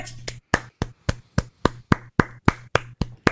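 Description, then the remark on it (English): A dozen or so sharp hand claps in a steady, fairly quick rhythm, each crisp and loud, with no talking over them. “I didn't expect you to clap, but I noticed that you didn't, and I will remember that.”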